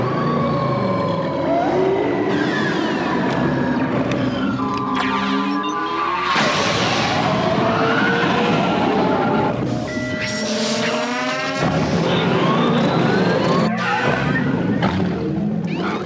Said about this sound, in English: Well, that kind of brings us to our first sound, the pod race engines warming up. Start your engines!